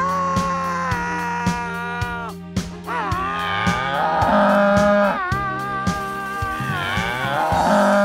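Long, drawn-out cow moos with bending pitch sound loudly over a steady, regular rhythmic beat, repeating throughout without any talking.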